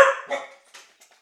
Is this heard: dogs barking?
yes